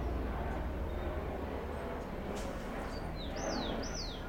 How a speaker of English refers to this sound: Did the helicopter disturb you in any way? Some people would say yes. What did it disturb? Peace. Your calm.